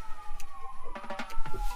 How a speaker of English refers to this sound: And this is the second episode in a row that while I've been outside recording, we have sirens going by. I'm going to give that a second to pass, guys.